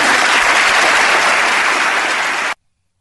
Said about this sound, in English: how about all those Democrats that were applauding what he just said?